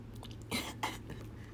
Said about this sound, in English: I'm nervous. I'm nervy. Mm, take a sippy sip.